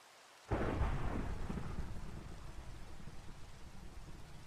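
After a brief hush, a loud crack of thunder breaks in and rolls into a long, deep rumble that slowly fades, with steady rain hissing underneath throughout.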